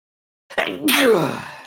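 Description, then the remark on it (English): A single loud sneeze: a short voiced intake of breath, then a sudden sharp burst that trails off in a falling, breathy exhale. No talking around it. “Bless you.”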